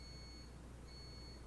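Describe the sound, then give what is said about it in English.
A coffee maker beeps as it shuts off: two quiet, high electronic beeps, one long tone followed by a short pause and another, over a low steady background hum with no talking. “That's the coffee maker shutting off. Do you think they heard that mm-hmm. beeping?”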